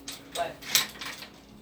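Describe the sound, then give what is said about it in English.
A deadbolt lock on the door of a soundproof room being turned, giving a short series of sharp metallic clicks and scrapes, with one brighter snap in the middle, fairly quiet overall. “But all I'm saying is, I can't believe we just deadbolted ourselves in here.”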